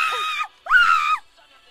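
Two loud, high-pitched screams in quick succession, each lasting about half a second with a sliding pitch, close and shrill with a brief pause between them.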